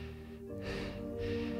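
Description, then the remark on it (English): Heavy, hurried breathing of a man struggling not to panic: two loud, rushing breaths in quick succession over a low steady hum in the background. “And he's breathing hard.”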